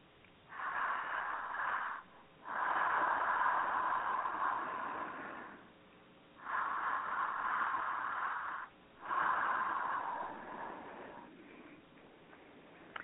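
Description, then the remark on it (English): Slow, deep belly breathing: four long, airy inhales and exhales in an even rhythm, each lasting a couple of seconds, with short quiet gaps between them and no talking. “So take a couple more really deep belly breaths.”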